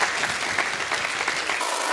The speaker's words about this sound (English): Can we have a round of applause for the amazing, amazing panel?